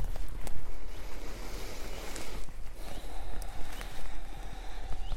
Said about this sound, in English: So as I start my walk through the woods, I try to experience every single footstep.